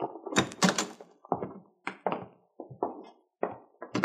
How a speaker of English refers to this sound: All right, come on. Here, Miss Schiller, I'll open the door.